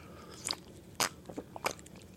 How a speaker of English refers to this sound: Hold on, I'm going to have a sip of some tea.